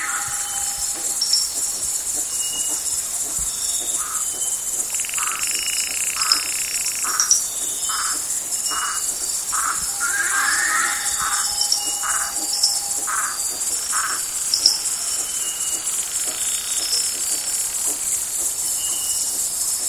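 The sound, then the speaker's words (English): Frogs calling at night in the rainforest of the Marotandrano Special Reserve, Madagascar: a steady series of short, evenly spaced chirping notes rising over a dense, continuous wash of high insect buzzing, with no voices. “In the still of the night, frogs, owls, and lemurs were anything but quiet as Daniel Grossman recorded their sounds in the Marotandrano Special Reserve.”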